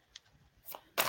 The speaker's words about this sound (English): So I've been shuffling, trying to get these cards broke in.